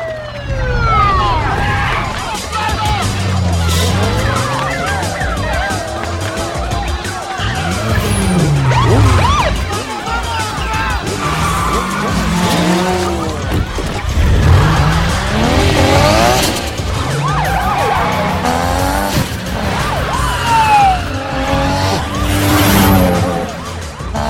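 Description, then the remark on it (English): Police sirens wail and sweep up and down as police arrive to end a street race, while cars rev and tires screech as racers and spectators skid and speed away, a loud, chaotic scene with engines roaring throughout. “Ryan walks up to Monica Fuentes as the cops roll up to end the street race. The racers and spectators scramble to get away.”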